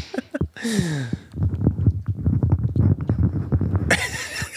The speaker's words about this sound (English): Sorry. Just munching into the microphone.